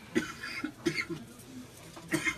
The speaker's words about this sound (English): Oh, nice cough.